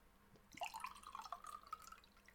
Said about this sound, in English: It's a good pouring noise. Holy shit, it is black. What now I know where the name comes from. Holy crap. Hold that up to the camera again. Oh my god. Yeah, there's nothing you can see through there.